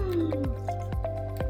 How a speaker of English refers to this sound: Yeah, so I gotta drink my coffee. Hold on. Sorry.